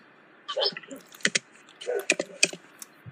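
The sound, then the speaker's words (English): Quick, irregular clacking of keys on a computer keyboard, coming in two short bursts with brief pauses between them. “Oh, I hear typing. Or I hear, like, key punching.”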